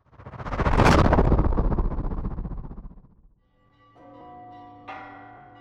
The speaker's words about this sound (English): The bells of the great churches of Rome rung out in alarm as citizens darted around the city frantically.